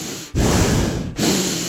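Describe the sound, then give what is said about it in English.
A man makes loud, snorting mouth noises in imitation of a horse, like Mr. Ed: two long, rough, breathy bursts, the second following a brief pause, with no talking. “He's a mouth noise guy.”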